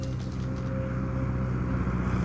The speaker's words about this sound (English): Is that a plane? Does that mean the power's back on?